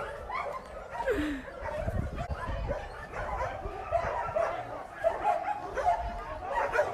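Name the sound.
dogs barking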